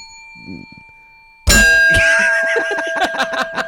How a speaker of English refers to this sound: Here's the normal swear bell.